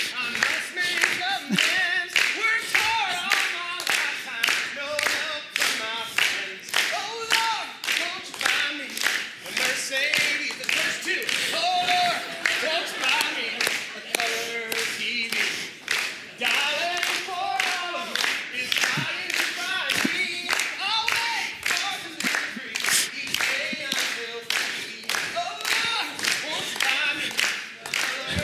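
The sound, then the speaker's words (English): A group claps hands together in a steady, even rhythm for the whole stretch, the sharp claps loud, with some voices and cheering mixed in underneath. “All right, everybody, help me out. Clap your hands.”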